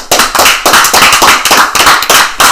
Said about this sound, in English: All right, stop clapping. Cut it.